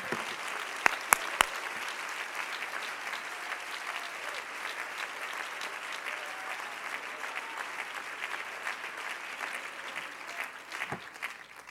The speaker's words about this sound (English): All clap your hands unto the Lord if you believe it.